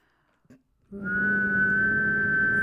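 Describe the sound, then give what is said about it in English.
A person hums a steady, buzzy kazoo-like tone through the mouth, a mouth trumpet, holding one note for nearly two seconds after a soft click, loud, with no talking. “You can whistle and make a little, like a kazoo sound. Oh, kind of like my mouth trumpet.”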